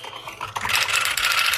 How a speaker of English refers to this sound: Excuse me. No, I'm not trying to be troublesome. I'm just typing.